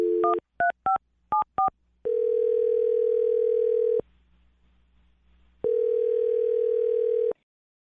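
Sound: telephone dialing and ringing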